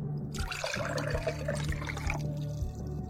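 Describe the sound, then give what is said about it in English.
A cocktail is poured slowly into a glass over grenadine, gently so the layers do not mix, a soft, steady trickling stream that runs for a couple of seconds and then tapers off, over a low background hum. “And for my favorite touch, I put a little bit of grenadine on the bottom, and I pour the cocktail in really slowly, just gently enough not to let them mix together so you can get that red on the bottom and the green on the top.”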